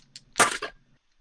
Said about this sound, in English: And then let me roll the superiority dice here. Nice. 1 and 2.